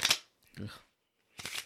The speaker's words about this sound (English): You're not good at shuffling.